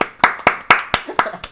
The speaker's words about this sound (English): Round of applause for my bitch of a sister.